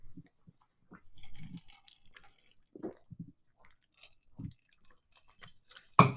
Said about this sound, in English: Oh, I need a sip of my iced coffee.